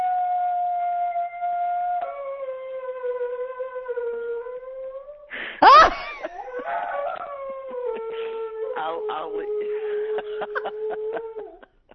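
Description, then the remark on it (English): A dog named Ernie howls along with a siren in long, steady, siren-like wails, breaking into a brief sharp yelp midway before continuing with wavering, pulsing howls until it stops. “Is that the dog?”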